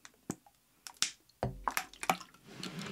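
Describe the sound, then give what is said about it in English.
Lime juice spills and splashes from a glass in a few quick, wet bursts, with small drips and squishy splatters, then a soft, steady trickle. No one speaks. “Already spilled it.”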